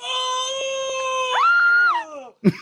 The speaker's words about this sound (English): What are you screaming for? I don't fucking know.